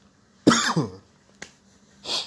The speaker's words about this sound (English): I hate it when I cough during a fucking pandemic like this.